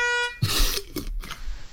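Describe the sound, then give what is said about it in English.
A short honking bus horn opens a bus-themed sting for a segment on Madigan Gate, a steady buzzy tone lasting under half a second, followed by loud rough bursts of noise and clattering sounds. “So there you are, the latest on Madigan Gate and a silly little bus theme to go with it.”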